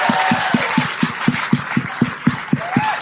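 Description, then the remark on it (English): Audience applause after a performance, with a steady rhythmic pulse of thumping claps about four per second over a wash of crowd noise and a couple of faint whistles. “Round of applause, please, for that.”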